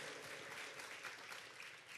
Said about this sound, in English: Yeah, come on. You're going to be clapping a while because I got a lot of these.